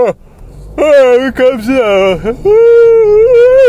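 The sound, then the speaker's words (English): A long, loud voiced yawn, its pitch wavering and sliding up and down before settling into a steady drawn-out groan for the last second or so, with no other talking. “You yawn sometimes.”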